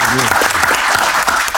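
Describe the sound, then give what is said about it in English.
An audience gives the guests a round of applause in a loud, dense burst, a steady wash of many hands with a faint voice briefly audible underneath. “So give our guests a round of applause for being here.”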